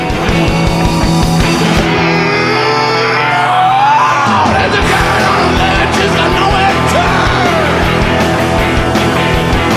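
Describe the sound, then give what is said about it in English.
A loud rock band plays at full volume while the singer lets out a long, sustained scream at the beginning of the song that bends and wavers over pounding drums and distorted guitars. “just lets out that big scream at the beginning, and it's out, and they're ready to go.”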